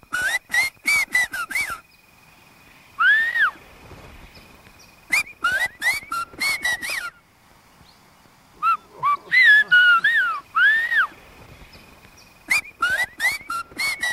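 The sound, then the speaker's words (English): Whistled speech from the mountains of Mexico: sharp, pitch-gliding whistles sound out in quick bursts and phrases, alternating with short pauses, like a whistled conversation carrying clearly through open air with faint background hiss. “In the mountains of Mexico, whistled speech is a vital form of communication.”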